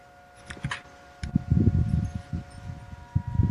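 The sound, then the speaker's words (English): Wind gusts buffeting outdoors, a low irregular rumble that swells and eases in uneven surges, with faint rustling and a steady background hum. “It's just slight, unless you get a gust, but that's a good sign.”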